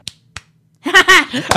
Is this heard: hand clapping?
yes